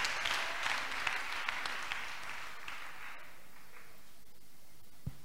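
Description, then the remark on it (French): A church audience claps for the Lord, bursting into dense, crackling applause that starts loud and gradually thins and fades over several seconds, ending with a few scattered claps. “Let us clap for the Lord.”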